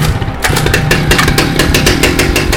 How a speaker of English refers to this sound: I looked over my shoulder and I saw it. My mom's chainsaw. Sitting there like she knew I needed it. I ripped the cord and let the engine roar.